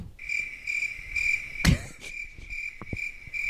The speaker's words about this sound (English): We've extended the experiment here by adding cricket sounds. I think that makes it even funnier.